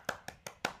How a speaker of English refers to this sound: Everybody just clapping.